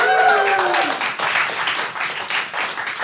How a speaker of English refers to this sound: …, give them a round of applause.